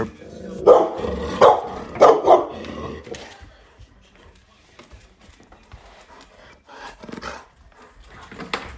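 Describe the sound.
A pet dog named Oakley barks four times in quick succession at the mailman, loud, at home, followed by quieter background noise and faint voices or movement.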